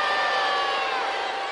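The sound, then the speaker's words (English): A large crowd boos and jeers at Wolf after he pushes a contestant down, a loud, sustained roar that holds steady throughout, with no individual voices standing out from the mass of noise. “And again, the whistle's being blown and the crowd are giving him the bird.”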